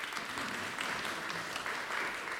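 An audience claps steadily throughout, many hands blending into a dense, even wash of applause that holds at a consistent moderate level with no voices over it.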